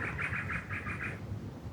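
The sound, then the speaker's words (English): A bird in the trees of Glebe sings a quick run of about seven bright, evenly spaced chirps over a low steady rumble of background noise, then the song stops and only the ambient hum remains. “Ah, yes, the bird song of Glebe. There's a whole bunch of bird song.”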